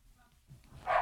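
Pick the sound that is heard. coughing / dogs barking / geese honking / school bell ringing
dogs barking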